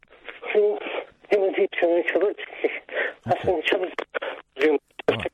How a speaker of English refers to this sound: just calm down a bit, because the phone signal's breaking up a bit.